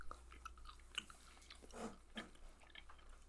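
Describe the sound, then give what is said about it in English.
Close-up chewing of a snack, with irregular soft crunches and wet mouth clicks over a few seconds, a couple of louder bites standing out, and no talking. “Oh, I almost swallowed it whole.”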